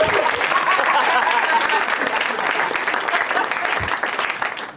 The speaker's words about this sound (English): Like, please vote, and please clap for that. Please clap!